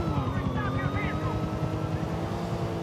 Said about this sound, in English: There's a chopper on our tail.